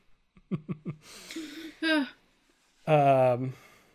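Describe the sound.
A child yawns up close: a few short vocal bursts, then a long breathy inhale, and finally a drawn-out voiced exhale that trails into quiet.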